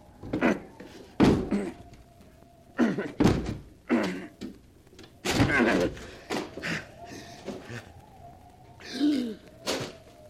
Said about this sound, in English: The door is locked. I'll have to break it down.